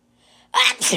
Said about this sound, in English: He had a sneeze.